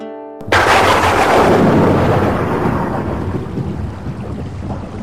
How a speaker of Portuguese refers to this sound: Putz, não acredito que começou a chover, cara. Logo agora que eu vou ter que ir pra casa. Não acredito nisso, vou ter que ir na chuva.